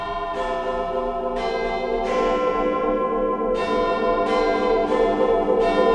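The bells of Big Ben's clock tower in London chime at 10:15 in a slow sequence of about seven resonant strikes, each ringing on and overlapping the next, loud and full over a steady low rumble of the busy morning commute.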